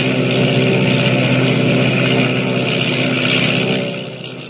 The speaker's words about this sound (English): Motors roaring, the giant seaplane skims across the water and rises into the dark, foreboding sky, carrying Jimmy and his dog with it.